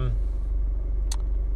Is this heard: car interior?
yes